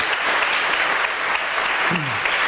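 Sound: audience applause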